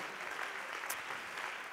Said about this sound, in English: And let the church say amen. Let the church clap your hands. Let the church lift your voice one more time to the Lord.